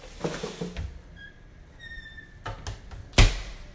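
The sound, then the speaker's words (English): A door is pulled shut, with faint rustling and a few thin creaky squeaks, then one solid thud as it closes. “Okay, now you can close the door.”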